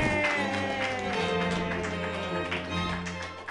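An audience claps enthusiastically, a dense, steady wash of many hands that lasts the whole stretch, with a sustained tonal musical sound running underneath.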